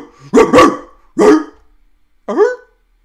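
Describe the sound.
A person imitates a dog barking as a shout-out to a dog named Alfie, giving four loud woofs: two quick ones together, a third after a pause, then a final rising yelp.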